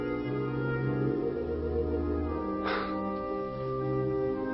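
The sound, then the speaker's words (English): A clarinet, taking over from a single sustained oboe note, plays a sweet, melodic phrase of sustained, reedy notes that shift gently in pitch, with a brief breathy flutter partway through. No one speaks. “Until a clarinet took it over. Sweetened it into a phrase of such delight.”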